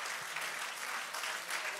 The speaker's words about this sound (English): Let's clap our hands unto the Lord and love him right now.